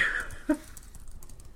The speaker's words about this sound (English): Are you still typing things